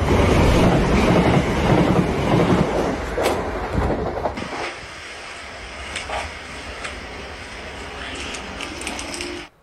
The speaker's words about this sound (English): Coming up now is a class 377 from Littlehampton to Southampton Central.